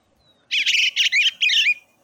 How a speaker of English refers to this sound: That's the eastern bluebird. Do it again.